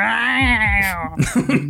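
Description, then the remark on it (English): A human voice imitates a pained cat, letting out a drawn-out, wavering yowl that trails off into a few short, broken vocal sounds. It is fairly loud. “Meanwhile, you hear a crossbow bolt get fired and the sound of a pained cat in the distance.”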